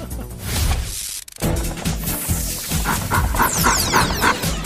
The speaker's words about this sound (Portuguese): Olha o cachorro.